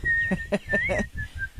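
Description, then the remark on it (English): A person whistles a hymn tune in a steady, clear tone that rises and falls slightly, with soft rhythmic thumping underneath. “It's hard to whistle "Onward Christian Soldiers."”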